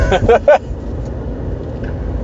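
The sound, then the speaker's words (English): A truck rumbles past outside, a steady low engine roar filling the whole stretch, with a few short, tonal engine or brake bursts near the start. No one speaks over it. “Jesus, what is with trucks today?”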